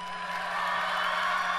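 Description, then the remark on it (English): An audience claps their hands to cheer on a man, a steady, dense wash of applause that holds at an even, moderate level for the whole short stretch, with no voices. “Okay, give him a hand clap.”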